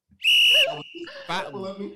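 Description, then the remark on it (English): A single sharp, shrill referee whistle blast rings out loudly for under half a second, followed by muffled voices talking. “Like you get all the whistles.”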